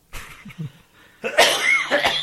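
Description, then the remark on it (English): A harsh, raspy cough erupts after a few softer throaty rumbles, ending in a loud, drawn-out rasping burst. No speech. “I hate my cough.”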